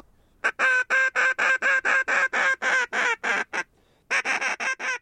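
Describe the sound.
A Ducks Unlimited biologist blows a duck call to ducks on Great South Bay, Long Island: a rapid series of loud, nasal quacks, about a dozen in a row, then a brief pause and another quick burst, clear with no talking.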